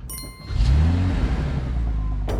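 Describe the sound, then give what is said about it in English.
A Bentley car engine, started by voice command, cranks to life with a brief burst, then revs up, its deep hum rising and holding steady, loud with no voices. “Engine go now. Yeah. Like, it's voice activated.”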